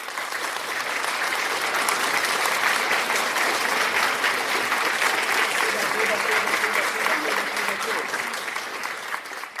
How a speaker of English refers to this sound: Applaudis, applaudis pour le Seigneur Jésus. Applaudis, applaudis, applaudis for the Holy Ghost.